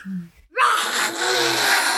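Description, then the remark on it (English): A person imitates a lion's roar: a brief low voiced sound, a short pause, then a loud, harsh, breathy roar that holds steady for about a second and a half. “Oh my goodness, is there a lion in our room?”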